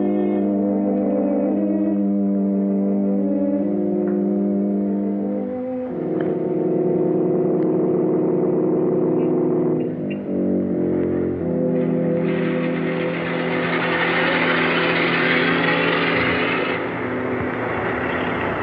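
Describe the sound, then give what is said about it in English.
A steady engine hum that grows louder and rougher as a chauffeured car approaches, with shifts in pitch and a fuller, hissing roar toward the end. “your car, sir.”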